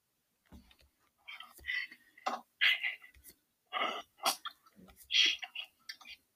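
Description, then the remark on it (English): Aggressive typing on a computer keyboard: irregular bursts of sharp, clattering key strikes in quick clusters with short pauses between, rather soft in level, and no one talking. “If I was typing aggressively, it'd be like this.”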